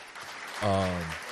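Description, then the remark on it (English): Light, steady applause from a small group, with a man's sustained voice rising over it midway like a drawn-out cheer, then fading as the clapping continues. “Clap for them, white people.”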